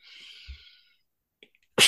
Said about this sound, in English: Oh, bless me. Sorry. Bless you.